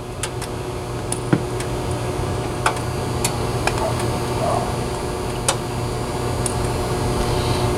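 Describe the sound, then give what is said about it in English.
Sharp, irregular ticks and cracks from metal grill grates expanding as they heat, scattered a second or so apart over a steady low hum, with no talking. “Now, the crackling that you hear in the background is actually the expansion of the metal on the grill.”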